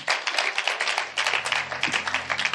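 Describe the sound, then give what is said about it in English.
A church audience claps their hands for God during a sermon, in dense, continuous applause, many overlapping sharp claps forming a steady rhythmic wash of moderately loud noise. “Clap your hands for God.”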